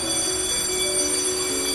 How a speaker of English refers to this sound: I peer over the balcony and watch folks in the middle of the workroom hear the factory bell sound. Lunchtime.